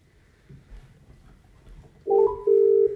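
After a couple of seconds of faint background hum, a telephone line's outgoing call tone sounds as two close, steady electronic buzzes in quick succession, loud and clear.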